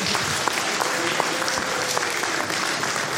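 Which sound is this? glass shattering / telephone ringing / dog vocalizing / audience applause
audience applause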